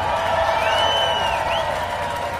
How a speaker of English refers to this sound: Race fans, here to present Will, his championship trophy for the win today, General Colin Powell. How about a nice round of applause for our race fans, our winner today, Will Power.